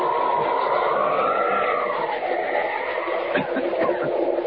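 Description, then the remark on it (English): A moving train roars past close by in a steady, continuous rumble, with a droning whine that shifts in pitch and a few sharper rattles near the end. “Down and right next to the train.”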